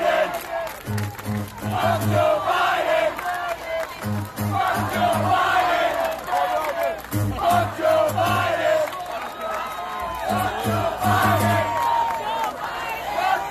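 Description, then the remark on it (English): A large, roaring crowd at a sporting event chants 'Fuck Joe Biden' in unison, repeating it in a steady rhythm about every three seconds. Loud shouts and cheers fill the gaps throughout. “The crowd starts getting fired up. And sometimes, you know, it's not a small crowd.”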